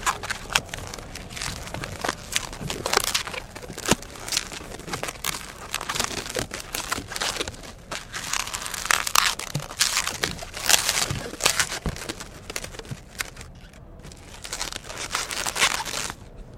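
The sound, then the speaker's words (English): Long, thin rubber balloons are twisted and rubbed into a teddy bear by a balloon-animal artist, giving a steady run of crinkly squeaks and sharp rubbery creaks, fairly loud and busy throughout, with no one talking. “Hard to convey, I think, over the radio, but what was just created during that little squeaky period was a teddy bear.”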